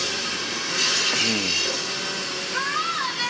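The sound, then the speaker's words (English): A chainsaw runs steadily, a loud, unbroken buzzing motor roar that fills the whole clip, with brief voices rising over it. “Oh, there's a chainsaw.”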